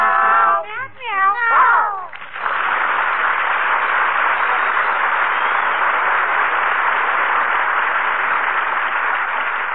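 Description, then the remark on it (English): A voice sings a few drawn-out, wavering meows in imitation of a cat for about two seconds, then a loud, steady hiss-like noise takes over and continues to the end. “Come meow, you pretty kitty. Meow.”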